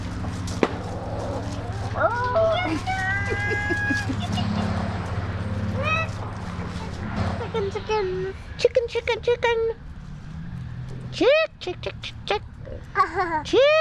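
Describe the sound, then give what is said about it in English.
Backyard chickens cluck and chirp in short, repeated calls, some rising and sliding in pitch, over a steady low rumble that fades partway through. “They keep chickens in their backyard.”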